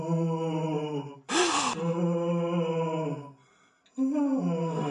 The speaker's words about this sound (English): This is the most ghostly activity we've ever encountered. And it's happening all the time. Listen to this eerie moaning.